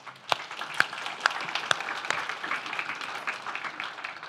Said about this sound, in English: Can we just clap?